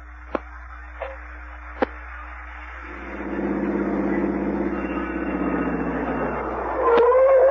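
A few sharp clicks, then a car engine starts up and settles into a steady, throaty rumble that swells and fades slightly, ending with a brief higher tone.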